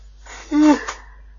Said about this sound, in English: I keep yawning as well for some reason.